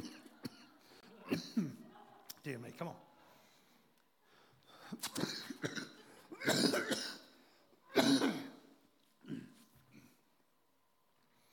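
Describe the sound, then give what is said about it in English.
A run of harsh coughs and throat clearing comes in irregular bursts, with a few short muttered words between them. “She was sick of my coughing already, you know.”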